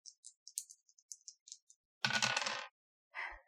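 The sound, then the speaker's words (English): Dice rolled for a listen check, giving a result of 95, rattle in a series of light, quick clicks, then tumble in a loud clattering burst, followed by a shorter second clatter as they settle. No one speaks. “Can I roll listen?”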